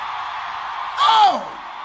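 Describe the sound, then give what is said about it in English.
An audience shouting hallelujah: steady crowd noise swells into a loud, brief cheer, with one voice crying out and falling in pitch before the roar settles back. “Somebody scream hallelujah.”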